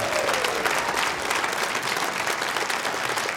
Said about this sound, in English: All right, let's get an applause to go into this song.